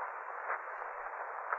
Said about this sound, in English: rustling. Hissing sound. Coming from that corner. Lamont, look. I see. Eyes staring at us. Oh, Lamont. Is it a snake? Looks like it, Margot. Looks very much like a snake.